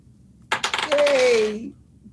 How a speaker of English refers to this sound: Okay. I'll use the amethyst dice.